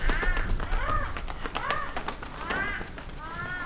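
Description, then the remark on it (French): A flock of black birds caws while circling over a village in the evening, with five or six harsh, overlapping calls arriving in quick succession against a steady, noisy outdoor background. “Ce soir-là, un vol d'oiseaux noirs commença à tourner au-dessus du village.”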